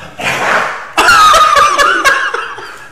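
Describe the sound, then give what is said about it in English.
Several dogs growl and scuffle outdoors: a rough breathy snarl, then strained whining growls broken by sharp yips and scuffling thumps for a couple of seconds, with no one talking. “Okay, dogs. Come on, now they all are getting along.”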